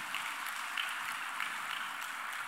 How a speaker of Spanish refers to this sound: Dele un buen aplauso al Señor.